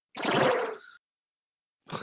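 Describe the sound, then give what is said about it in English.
The sound effect for casting the Chaos Bolt spell: a warbly, fart-like, loud, raspy, sputtering burst lasting just under a second, trailing off into a wavering hiss, then a second burst starting after a short silence. “It's like a warbly fart.”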